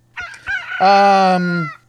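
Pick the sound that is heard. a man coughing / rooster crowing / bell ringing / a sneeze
rooster crowing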